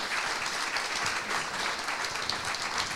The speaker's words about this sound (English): Well, thank you so much, each and every one of you. Can we give them a round of applause, please?